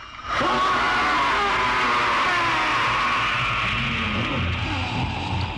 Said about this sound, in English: So it's like, oh my God, like the Oily Maniac, this monster finally arrives. And he has this really cool, unsettling scream. Anytime he shows up on screen, there's this horrible scream.